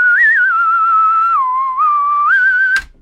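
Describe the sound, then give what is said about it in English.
Someone whistles the spaghetti-western theme from The Good, the Bad, and the Ugly, a slow tune holding long notes that step down and back up, alone without talk, ending in a sharp click. “You guys are awful, awful, awful whistlers.”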